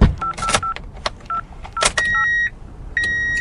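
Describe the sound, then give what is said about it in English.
Telephone keypad dialing tones: a quick, uneven series of short beeps mixed with button clicks, followed by two longer steady tones, clear with no one talking. “really hope he answers the phone.”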